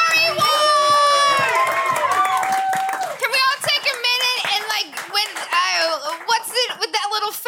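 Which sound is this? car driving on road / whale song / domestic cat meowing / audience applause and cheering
audience applause and cheering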